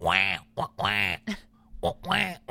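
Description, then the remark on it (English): Three loud, nasal quacks in quick succession, each drawn out and buzzy like a duck call, made by a voice imitating the call. “And I bet he used one of those duck calls that they make, you know?”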